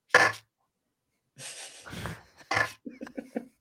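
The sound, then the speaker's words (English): A voice imitates the clapping noise or small explosion of an old video game with harsh, hissing bursts of breathy noise, first a sharp pop, then a longer crackle, another burst, and a few quick sputtering puffs at the end. “Like, that clapping noise or any kind of small explosion in an old game sounded just like this.”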